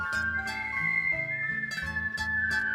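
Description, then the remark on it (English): A thin, eerie whistle holds a long, slightly wavering high note over a dark musical backdrop, with a few soft percussive hits underneath and no talking. “She whistles out to men walking alone at night.”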